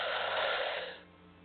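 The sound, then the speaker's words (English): A slow, airy inhale drawn in through the nose during a guided breathing exercise, a soft breathy rush that holds steady for most of a second and then trails off quietly, with no talking. “One more time, inhale.”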